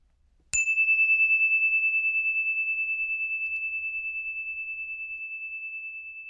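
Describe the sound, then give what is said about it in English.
A single story bell chime, rung to begin a children's story, rings out once with a sharp strike, then a clear, high, pure tone rings on and slowly fades with a gentle wavering pulse, alone in silence. “Here comes the story bell.”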